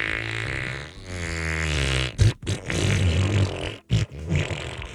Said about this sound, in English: Oh my God. That was the longest fart I ever heard.